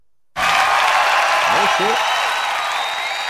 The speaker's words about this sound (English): Let's get a big round of applause, please, for DeMarcus Beasley and Aguchi Anyewu.